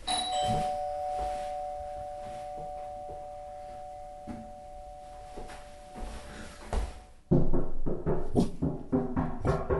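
A doorbell chimes with sustained ringing tones that hang for several seconds, followed by a burst of louder, rapid clattering sounds near the end.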